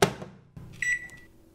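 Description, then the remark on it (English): A microwave oven heating a cup of water for ramen: a sharp clunk of the door shutting, a second thud, then a short high electronic beep and a low steady hum as it starts running, with no talking. “I pour the water into the cup and put it in the microwave.”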